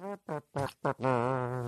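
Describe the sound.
A voice imitates a trumpet with buzzy, brassy lip sounds: four short, punchy notes followed by one long, sustained blast, loud and alone with no talking.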